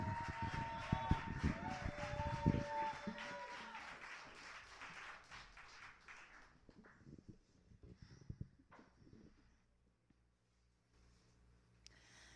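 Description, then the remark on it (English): A crowd applauds a poem at a poetry event with dense, steady clapping and a few whistles or cheers, loud at first, then thinning out and fading over several seconds until only scattered claps remain. “Did you like the poem? Clap. And keep on clapping”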